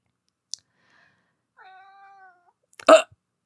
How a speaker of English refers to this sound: Oh, that was a really sad meow.